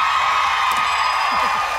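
A light smattering of audience applause, steady scattered clapping for the whole moment with a crowd murmur and a brief vocal whoop near the end.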